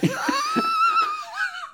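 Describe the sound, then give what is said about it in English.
A person imitates heavy breathing into a phone: a drawn-out, wheezy, whistling breath with a strained whine, fairly loud and alone, lasting under two seconds. “Heavy breathing? You talk first.”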